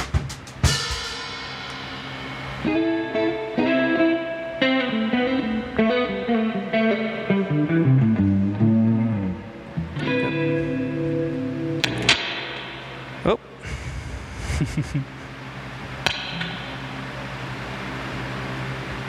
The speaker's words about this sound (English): Let's hear how that guitar sounds